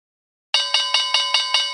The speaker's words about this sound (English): Let's ring in the opening bell to the Dubai trip recap with the one and only Blake Horstmann.